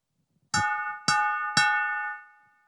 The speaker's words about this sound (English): I've never made oil and vinegar in these, by the way, because they're a pain to clean out afterwards. Can you just ring that bowl one more time?